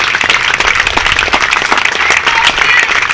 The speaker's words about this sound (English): Once again, congratulations to the Mount St. Joseph Lions. Let's give all those astounding student athletes a big round of applause.